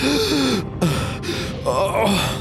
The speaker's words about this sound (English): Koto falls to her knees and begins gasping for air.